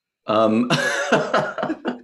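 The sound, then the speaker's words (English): A single voiced sneeze: a rising, tonal intake that breaks into a loud, breathy burst, followed by a few short, choppy vocal bursts as it trails off. “Bless you.”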